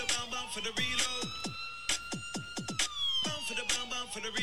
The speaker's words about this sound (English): Are the sirens throughout the whole song? No. Is this still garage? Yeah.